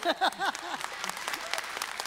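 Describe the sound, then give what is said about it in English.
A crowd breaks into scattered applause for a granddaughter getting her PhD in nuclear fusion engineering at MIT, with many overlapping claps in an irregular patter. A brief voice or cheer rises over the first moment before the clapping carries on alone. “You can clap.”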